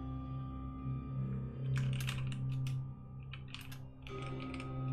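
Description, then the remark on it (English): Bursts of rapid computer keyboard clacking come in quick clusters, with short pauses between flurries, over a steady low electronic hum. No one speaks. “I hope you're typing in Portuguese, because I am not.”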